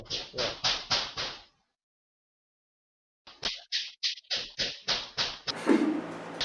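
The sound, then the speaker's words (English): A quick run of about five knocks on a door by someone's brother trying to come through it, a pause of a couple of seconds, then another longer burst of steady knocking ending in a short scuffling rustle, fairly loud. “Sorry, my brother's trying to come through the door and yeah. No, go away. But, yeah. And he's gonna carry on knocking.”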